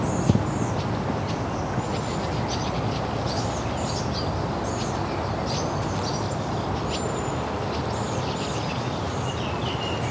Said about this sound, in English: Wilson's Warbler.